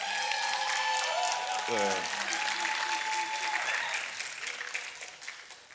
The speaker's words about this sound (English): Sustained applause is necessary.